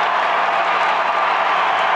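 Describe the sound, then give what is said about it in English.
A dense, steady roar of a basketball arena crowd cheering late in a game, with their team down 90-81 and its 11-game win streak in danger, loud and sustained for the whole stretch with a broad hissing wash of voices and clapping and no single voice standing out. “Crowd finally gets going.”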